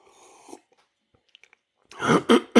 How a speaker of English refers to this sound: Let me pause for just a moment. We're going to take a couple of sips. Here's one.